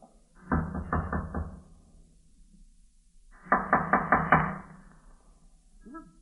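Two separate rounds of firm knocking on a wooden door of an old tenement, each a quick series of four or five raps, with a short pause between them and no voices.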